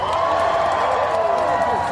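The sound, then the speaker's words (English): A large outdoor crowd at the March for Science in Washington, D.C., cheers and applauds in the rain at a steady level, with many overlapping voices whooping and shouting through the short stretch of clapping. “Have a big round of applause for staying with us through this rain.”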